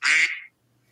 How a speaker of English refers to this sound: Oh, there's my duck.